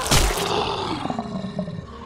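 A deep, rumbling roar from the beast, the master of the house, bursts out loudly at the start, then trails into a long, growling rumble with rough, throaty texture that gradually fades.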